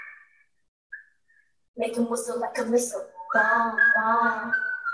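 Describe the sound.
A few short whistled notes sound at the start, then a song with a lively, full-voiced vocal comes in loudly and carries on over the music.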